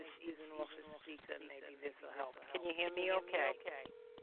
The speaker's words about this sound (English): I'll take this off the speaker, maybe this will help. Can you hear me okay? I can hear you in the background, in the distance, but echoing.